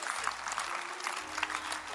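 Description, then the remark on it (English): An audience claps steadily, a dense, irregular patter of many hands at a fairly soft, even level, with no one speaking over it. “Oh, I thought you would clap. You would clap.”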